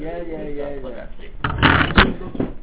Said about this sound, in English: Sorry, just my pencil.